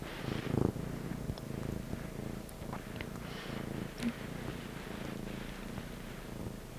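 A female cat purring steadily, a soft continuous low rumble with a gentle rhythmic flutter, fairly quiet and with no one talking over it.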